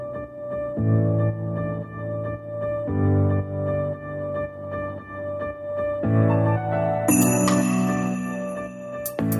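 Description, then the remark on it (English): Sparse music with sustained low, pulsing tones, then a bright shimmering sleigh bell jingles in near the end, standing out crisply above the accompaniment. “That singular sleigh bell isn't going to come around until that's the beginning of the verse”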